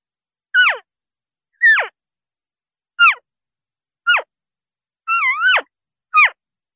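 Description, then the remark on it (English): A person imitates an elk calf with six short, high-pitched mewing squeals, each sliding downward, spaced about a second apart; the fifth is longer and wavering. No talking between calls. “I'm going to do calf sounds, which are baby elk.”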